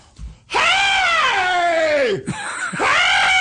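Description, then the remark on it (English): A man's voice imitates Jimmy Stewart screaming out the window of the Spirit of St. Louis: a loud, drawn-out scream, wailing with a falling pitch, breaking briefly, then rising into a second strained howl, intense. “You can't do screaming impressions.”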